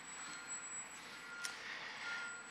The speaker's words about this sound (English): I know it's very distracting because there's beeping outside.